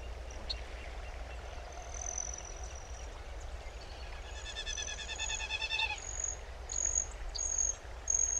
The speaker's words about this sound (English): That high-pitched metallic trill you just heard was a broad-tailed hummingbird. To me, this is a classic Colorado summer sound.